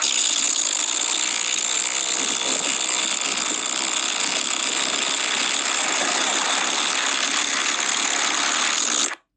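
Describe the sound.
A person blows a long imitated fart noise, a steady, loud, buzzy rasp that holds for about nine seconds without pause before cutting off abruptly.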